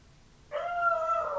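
A dog lets out a single drawn-out, whining howl that starts abruptly after a brief quiet moment and holds steady, sounding close by with no one talking over it.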